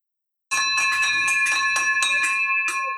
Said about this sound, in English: There's our victory bell.